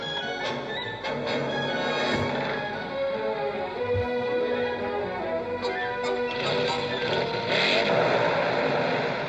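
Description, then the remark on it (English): A powerful motorbike engine roars steadily, its pitch rising and falling as the throttle is revved, with a few sharp mechanical rattles along the way and no voices. “With a fine weekend, a powerful motorbike, and a girlfriend on the back, the Ton Up Boys set off.”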